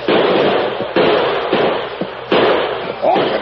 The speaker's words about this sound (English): Frasier gave the order to open fire. Pour it in, old man!